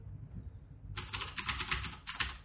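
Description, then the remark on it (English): Rapid clacking of keys on a new, loud DAS mechanical keyboard starts after a quiet moment, a dense run of sharp, bright keystrokes with a brief pause near the end. “Ed's got a new keyboard, the DAS keyboard. It's a very fashionable keyboard right now. It's very loud.”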